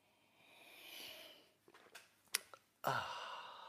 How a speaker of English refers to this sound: I like coffee. And join me now for the unparalleled pleasure, the dopamine of the day, the thing that makes everything better. It's called the simultaneous sip, and it's going to be on fire today. Fire, I tell you. Go.